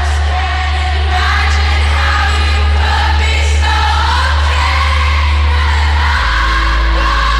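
A large concert crowd sings along loudly, many voices blending into a continuous wavering melody over a steady low rumble, with occasional whoops rising above the chorus.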